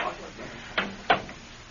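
An office door swings shut, with a soft first bump and then a firmer latching thud.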